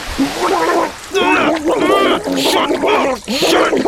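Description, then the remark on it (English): A voice imitates a babbling brook with warbling, gurgling vocal sounds in several loud, close bursts over about four seconds, with short pauses between them. “The calming sounds of a babbling brook.”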